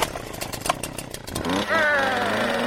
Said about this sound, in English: But starting a borrowed chainsaw is another thing altogether. This isn't going to start.